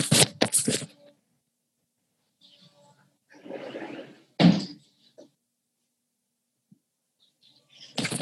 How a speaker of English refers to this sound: I have trains going. Let me just close the door. 1 second.